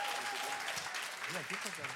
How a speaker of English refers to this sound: And did you guys already clap for him? Oh, okay. You guys could do that again.